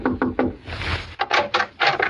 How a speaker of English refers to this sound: Well, anyway, I pulled up at the Shady Glade and knocked at the door of cabin number 4.